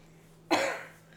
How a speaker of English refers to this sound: The coughing one.